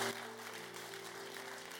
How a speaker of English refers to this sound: You are not clapping well.